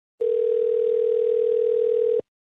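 A steady, unbroken telephone dial tone of an outgoing call hums at a single mid pitch for about two seconds, even in loudness, then cuts off abruptly. No one speaks.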